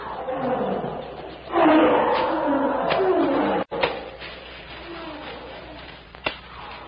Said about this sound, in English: As they break through into the clearing, the noises of the great jungle seem for the moment hushed to a mere echo of blurred sounds, rising and falling like the surf on a remote shore.